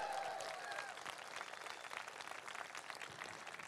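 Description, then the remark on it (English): A crowd breaks into a sustained round of applause for 18-year-old rider Max Watchman, on his first, winning Aga Khan, with dense overlapping claps at a steady, fairly loud level throughout and a brief higher tone or whistle at the very start. “So give him a huge big round of applause.”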